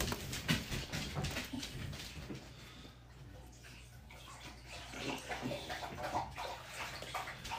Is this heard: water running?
yes